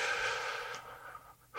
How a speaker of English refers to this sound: Okay, let's take a breath in.